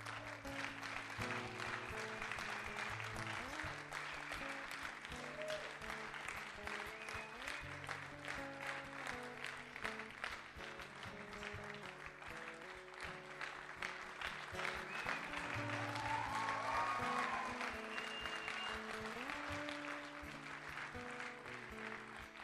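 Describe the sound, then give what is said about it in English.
An audience applauds steadily and loudly for over twenty seconds, the dense clapping swelling slightly near the end, while music with sustained, shifting chords plays underneath throughout. “Clapping because they're just so excited with you.”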